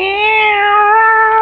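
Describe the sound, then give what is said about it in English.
A single loud, drawn-out cat yowl in a kitchen, sustained for over a second with a slight downward slide in pitch, from a cat in a fight. “Two women in the same kitchen, plus a cat. Teeth are bared. Clothes are unsheathed. Fur flies. It's a cat fight.”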